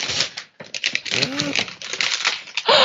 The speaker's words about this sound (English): So I'm going to unwrap it as we're talking. We're going to do like a little unboxing here on the podcast. Sorry, you're going to hear some paper tearing.